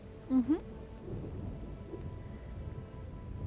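Steady rain falls in a dense, continuous hiss with a low rumbling undertone, and a brief chirping call rises near the start before the downpour carries on alone.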